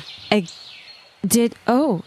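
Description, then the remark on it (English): Three loud, harsh bird calls ring out: one short squawk, then a pause, then two longer, throaty cries in quick succession with a faint hiss in the background. “You are best to seek me out. Follow my bird.”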